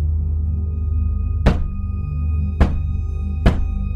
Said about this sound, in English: There's three people? You're right. He knocked three times.